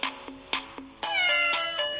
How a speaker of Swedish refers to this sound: Här kommer CP-katten.